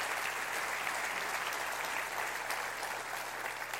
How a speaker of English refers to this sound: Clap your hands and rejoice with that right now.